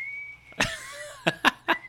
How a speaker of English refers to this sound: Ready? You're ready with that whistle. Good for you, my friend.